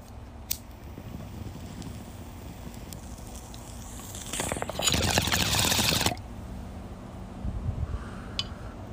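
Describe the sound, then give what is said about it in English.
A bong hit through a water pipe, recorded outside: a loud, rough burst of bubbling water gurgles for about a second and a half over a steady low background rumble of traffic, with a few faint clicks before it. “Good guys, that's a good rip.”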